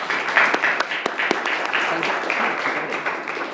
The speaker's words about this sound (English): All right, if there are no further questions, please join me in a round of applause for speakers today.